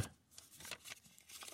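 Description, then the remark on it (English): A paper envelope holding a quarter coin tears open quietly, a series of short, scratchy rips and crinkles with no one speaking. “Okay, this one's a quarter in an envelope.”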